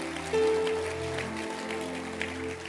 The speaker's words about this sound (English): Clap your hands for my little boy.